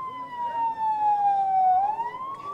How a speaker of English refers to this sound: More injuries arrive to the hospital. Here is an ambulance full of children.